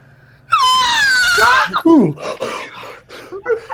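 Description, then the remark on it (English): A voice imitates a long, piercing shriek from somewhere in the village, far to the east, that rises sharply and wavers for about a second, followed by breathy, moaning vocal sounds that trail off. “This shriek comes from somewhere in the village. Far to the east.”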